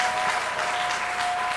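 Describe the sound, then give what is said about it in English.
A dense, steady burst of many hands clapping together during prayer, loud, filling the space with continuous applause-like patter and no voices standing out. “Clap, clap, clap, clap, clap and pray.”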